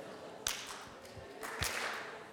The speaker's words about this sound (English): So I'm gonna clap for you. Don't rush. It makes it hard for us, okay?